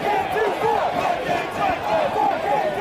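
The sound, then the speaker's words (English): A large crowd of protesters chants and shouts together outdoors, many voices merging into a loud, steady roar with rising and falling calls repeating in a rough rhythm throughout. “When masked men started smashing windows, protesters objected and stepped in to stop them, taking out this man first, then tackling another who'd stepped in to finish the job, while the crowd chanted.”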